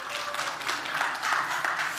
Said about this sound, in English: How many of you are ready? Yeah, let's hear it. Let's, round of applause. How many of you are ready for Christmas?